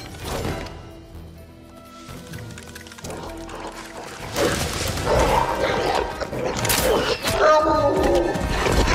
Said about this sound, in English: Oh, there's wolves now.